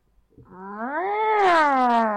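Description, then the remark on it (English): A person imitates a cat's drawn-out, dissatisfied meow, one long rising-then-falling wail lasting about two seconds, fairly loud with no other talk. “Okay, then we have the dissatisfied meow.”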